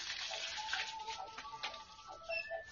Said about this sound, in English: Shower. Water dropping. Oh, man. You know. A beautiful woman taking a shower.